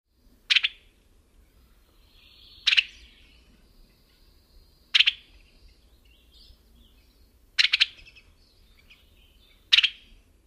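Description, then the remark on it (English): A Western Tanager gives five sharp, clipped chuckling calls, each a quick burst of two or three run-together notes, spaced about two seconds apart over a faint, low background hum. “The Western Tanager call is a sharp 2-3 note chuckling.”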